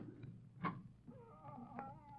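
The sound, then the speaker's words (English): A cat howls in a drawn-out, wavering cry that rises after a brief rough burst, fairly faint, with no one speaking over it. “Mom, that cat howling.”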